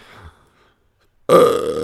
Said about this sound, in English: Excuse me, everybody. I burped. I feel like that's not the first time you burped on the podcast. It's not, but that was a long one